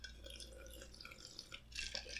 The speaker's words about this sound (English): And that's me taking a sip.